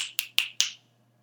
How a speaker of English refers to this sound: I just snapped my fingers.